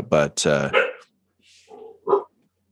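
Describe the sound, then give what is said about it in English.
Car horns made to sound like barking dogs, heard outside: a quick pair of loud barks, then a short pause before softer yaps and one final sharp bark. “Outside, you hear the bark of car horns. On this world, they've made them all sound like animals.”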